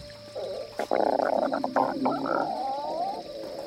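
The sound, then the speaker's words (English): A gurgling, rumbling growl like a stomach growling, rolling on in irregular wet bursts for a few seconds, moderately loud, with no voices over it. “It sounded like a stomach growling.”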